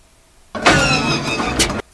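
A small plane engine sputters and whines as it tries to turn over, a loud, rough burst lasting just over a second that cuts off abruptly without catching. No voices.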